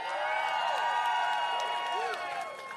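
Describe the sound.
A crowd applauds and cheers loudly and steadily to vote on a contestant's chances of winning a game, with many voices whooping and shouting over continuous clapping for about three seconds before it starts to ease slightly.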